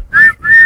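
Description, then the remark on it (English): A person whistles two short, steady notes in quick succession, the second held a little longer, close and clear with no talking. “Blow the whistle.”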